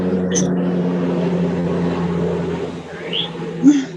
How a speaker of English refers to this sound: Okay, we're listening to the truck passing. It's a plane. A plane. Oh, it's a plane.